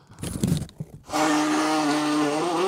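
A cartoonish sneeze: a few breathy, sputtering bursts build up, then give way to a loud, sustained nasal honk that holds a steady buzzing pitch for over a second.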